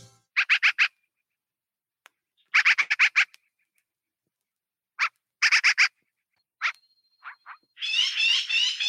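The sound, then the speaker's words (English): American crows caw loudly in quick bursts of four or five harsh calls, separated by short silences, ending with a rougher, longer run of cawing. No one speaks. This is a recorded bird song from the album A Field Guide of Bird Songs (page 118, American Crow), played as the opening track of a streamed DJ set. “So everything you hear is birds. Page 118, American Crow.”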